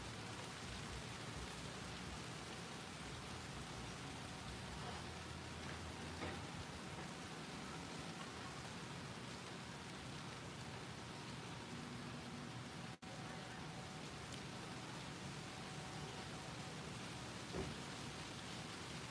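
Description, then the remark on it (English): Light drizzle falls steadily, a soft, continuous hiss of rain with faint scattered droplet ticks, fairly quiet and even throughout with no voices. “I think it's just a little light drizzle.”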